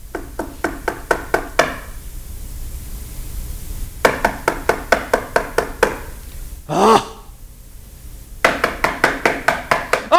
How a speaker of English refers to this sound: Your friend may not come to the door because he's like, oh, I'm so happy to see you, but I want you to stop knocking.